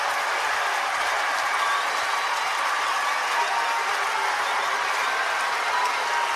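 crowd, stadium crowd cheering

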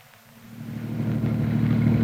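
nature, thunderstorm with heavy rain

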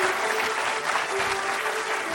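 crowd, polite audience applause

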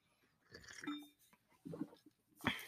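food or drink, sipping coffee

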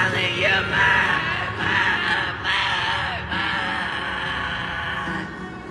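crowd, concert crowd screaming

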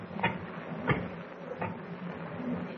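household object, door being locked

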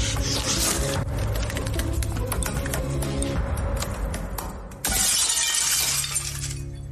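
impact, window glass shattering

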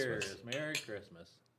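household object, glasses clinking

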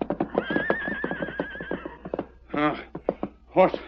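animal, horse neighing

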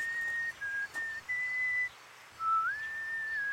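human body sound, person whistling a tune

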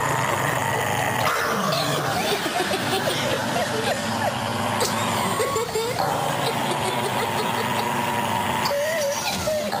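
animal, dog sounds

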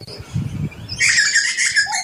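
bird, birds chirping

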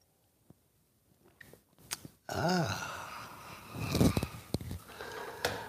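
food or drink, sipping coffee

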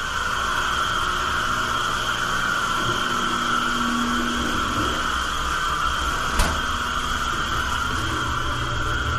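household object, clothes dryer running

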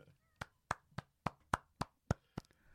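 human body sound, hand clapping

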